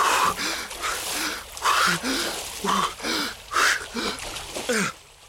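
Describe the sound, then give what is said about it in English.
Rhythmic splashing of someone swimming for shore in a dark pool of water, with about eight bright watery strokes in steady succession and breathy sounds mixed in between them. “Trying not to think about what else might be in the dark pool of water that had broken his fall, Danny swam for shore.”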